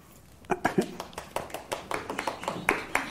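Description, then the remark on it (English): Sparse, uneven clapping from a few people: a scattering of sharp hand claps at moderate volume, starting after a brief pause and continuing irregularly without settling into a steady rhythm. “Two people applauded. Three. Four.”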